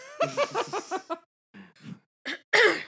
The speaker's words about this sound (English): And I have to get this cough out of my chest soon.